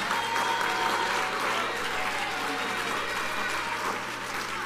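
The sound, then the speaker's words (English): A church audience claps hands to the Lord in a sustained, dense wave of applause that stays loud and steady throughout, with a few voices shouting unto God faintly beneath the clapping. “Somebody clap your hands to the Lord and shout unto God.”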